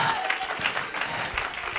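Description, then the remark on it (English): An audience claps hands unto the Lord in a dense, steady burst of applause, many overlapping claps forming a continuous crackling wash with a few faint voices mixed in. “If you believe it, clap your hands unto the Lord.”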